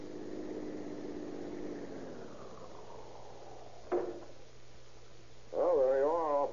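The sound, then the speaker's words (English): A police car engine hums steadily and winds down, followed by a sharp click and a brief wavering tone near the end, all moderately quiet. “How did you like your first ride in the police car?”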